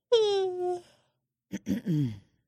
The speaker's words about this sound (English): Was that me? That yawned? Yeah. Yeah. Okay.